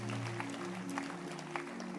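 A crowd claps steadily in a dense, continuous patter of hands, with a low sustained tone humming underneath throughout.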